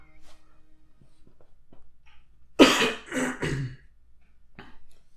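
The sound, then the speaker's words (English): A burst of harsh coughing, two or three quick hacks in a row, with a faint throat sound trailing after; no one talks. “We'll cut the mic. Cough out.”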